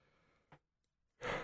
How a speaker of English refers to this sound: I'm yawning.